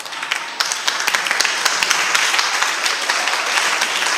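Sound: audience clapping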